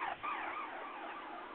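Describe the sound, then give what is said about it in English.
A wailing siren sweeps up and down in pitch, a steady, unbroken electronic howl with no voices over it. “And then an alarm goes off.”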